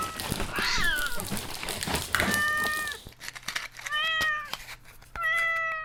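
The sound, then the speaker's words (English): A cat meows repeatedly, several drawn-out, high-pitched cries, the first ones overlapping amid busy background noise and the last two ringing out clearly with short pauses between them. “Look, Daddy. It's a kitty.”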